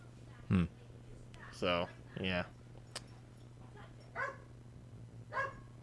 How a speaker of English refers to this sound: Is there one? Yeah, there's another dog with Aeon. That's all right. They can play.